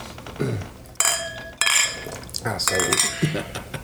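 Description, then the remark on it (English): Several bright clinks of glasses of beer touching, each ringing briefly before fading, as drinks are knocked together in a toast, with a faint clatter in the background. “Cheers, guys. Cheers.”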